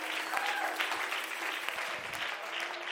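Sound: audience clapping hands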